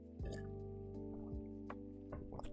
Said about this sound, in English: Hold on, let me sip some water because my mouth is dry as fuck.